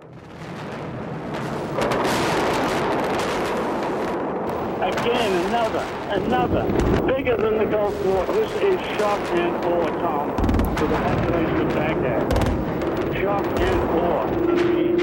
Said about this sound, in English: The first strike against terrorism as a missile barrage lands on Afghanistan. The Taliban claims Osama bin Laden was unhurt in the raids, and the world waits for the next move.